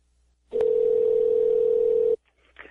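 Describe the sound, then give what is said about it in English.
A telephone line rings once during a call to a marijuana store, a single steady electronic tone lasting under two seconds, clear, followed by a brief faint voice picking up. “So let's get him on the phone, all right?”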